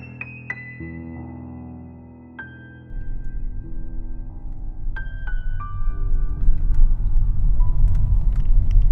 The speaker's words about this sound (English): As I got in the car and I was driving away from Holbrook